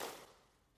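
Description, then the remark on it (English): A single hand clap rings out in the middle of a school PE hall, followed by a smooth reverberant tail that fades over a fraction of a second. “This is the sound of me clapping in the middle of the PE hall.”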